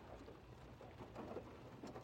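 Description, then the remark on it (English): Steady rain patters and hisses outside a car as it is pulled in out of the rain, recorded on a phone's voice memo recorder, with a low rumbling wash underneath and a few brief louder bursts of drops, fairly faint and continuous throughout. “All right, I am going to pull my car in out of the rain. I don't know if you guys can hear it.”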